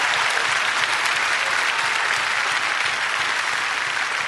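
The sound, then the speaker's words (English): Sustained, loud applause from a large group giving a clap offering to the Lord, a dense steady wash of many hands clapping at once with no pauses and no voices standing out. “How many want, if you want wisdom today that comes from the throne of God, I want you to give the Lord a great big clap offering and tell him you want wisdom.”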